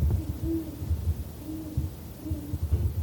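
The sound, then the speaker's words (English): A great horned owl gives a series of deep, soft hoots, about four evenly spaced notes, fairly faint over a low rumbling background, with no voices. “This week's deep dive is the great horned owl.”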